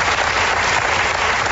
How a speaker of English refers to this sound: Wait, he says the word no, and they start clapping. What in the world? It's just Like this game. I want that audience just sitting right here on the couch during the show. Just every word we say, they applaud.